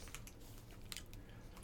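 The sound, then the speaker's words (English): Soft chewing of an orange-colored gummy fruit snack, with irregular small squishy clicks and smacks over a quiet background, and no talking. “It's like chewing one of those, like a fucking gumdrop.”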